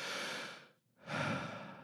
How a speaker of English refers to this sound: And I'm going to take a deep breath for Miss Melissa, the bathtub mermaid, and then we're going to do the scene.